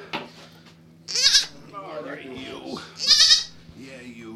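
A goat bleats loudly twice, a couple of seconds apart, with softer wavering bleats and murmurs in between.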